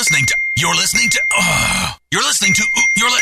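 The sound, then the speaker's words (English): A mobile phone rings with a steady, high-pitched electronic tone during a morning show in the studio of Laser 103.3 radio, running under people talking loudly, with only brief pauses in the ringing. “can you please silence your phone for one friggin' minute so I can get this done?”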